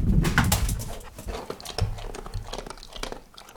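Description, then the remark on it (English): A dog named Abby chews and gnaws noisily on a squirrel she has been given to eat, with wet smacking bites and crunches in an irregular rhythm, plus a few short snuffling grunts. No one speaks. “Is my pooch hungry? Would she like a snack? A squirrel?”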